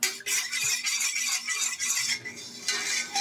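A spoon stirs a slurry of cornstarch in a tablespoon of water for gravy, making a steady run of bright, raspy scraping strokes against a small dish for a few seconds, with brief pauses between bursts and no talking.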